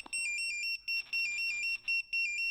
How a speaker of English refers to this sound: So that's the sound when our pagers alert. So that's the sound that wakes us up at 2 o'clock in the morning when there's a job. All of the crew carry a little pager with them so that they can respond wherever they are